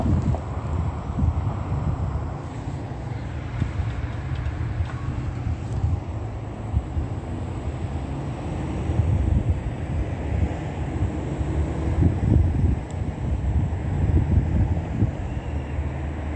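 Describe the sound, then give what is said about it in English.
A helicopter flying overhead near the Fontana Chamber of Commerce makes a deep, churning rumble that fills the whole recording, loud and steady with a slight swell toward the end, mixed with gusty wind noise and no voices. “Engaging in terrorism with that state that just flew over my head in a helicopter in directed light.”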